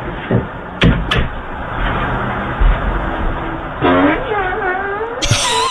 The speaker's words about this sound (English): And then he gets caught on Ring camera farting on the doorstep. Oh, no. So this is one of those situations where he said, hey, I left something out on the car. And then the Ring doorbell camera picked this up.